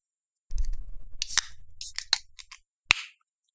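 A can of beer tasting like a blueberry glazed donut is cracked open: a low fumbling rumble, then a series of sharp metallic clicks with bursts of fizzing hiss, ending in one last crisp snap. No one speaks.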